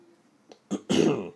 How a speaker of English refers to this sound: sorry, excuse me, I have a bit of a cough, and it's not gone yet.